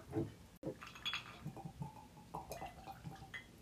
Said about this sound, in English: That's a pretty healthy pour there.